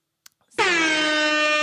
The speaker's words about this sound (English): Yes, and I have the air horn as well.